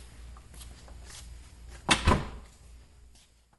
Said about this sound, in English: So since all these are firewalls, It's a good practice to keep the fire cabinets closed and the doors closed. We just pull this shut behind you.